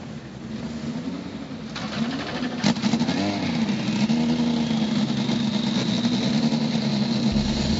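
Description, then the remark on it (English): A field of race car engines starting on command at the Indy NXT by Firestone Music City Grand Prix rumbles loudly and steadily, with engines revving up and down in overlapping waves throughout, no voices over them. “Drivers, start your engines.”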